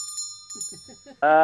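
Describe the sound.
A bell rings with a bright, sustained metallic tone that hangs in the air, while short bursts of voice and then a loud voiced sound come in over it.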